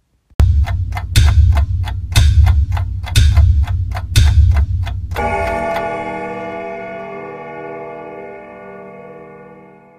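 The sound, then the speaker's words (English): A countdown effect introducing a show's special guest: loud, steady clock ticks with deep thumps about once per second for five seconds, then a bright ringing chime that lingers and slowly fades out. No one speaks. “But let's get our special guest in this week and let's give him the countdown.”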